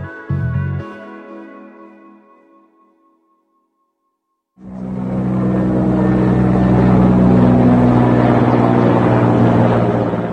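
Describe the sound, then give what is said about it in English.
After a ringing tone fades into a brief silence, a loud, steady drone of helicopters overhead rises and holds, a dense mechanical hum with a low throbbing rotor beneath it, continuous with no talking, over the town of Atmer in Idlib, Syria, on a Wednesday night. “On Wednesday night, in the town of Atmer in Idlib in Syria, residents woke to the steady hum of helicopters overhead.”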